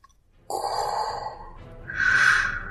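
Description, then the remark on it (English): A person gasps for breath, voicing the shark Commander Tar Kingfish, who is short of oxygen-filled air: a sharp, raspy inhale followed by a second, louder strained breath, fairly loud with no talking. “Commander Tar Kingfish gasped.”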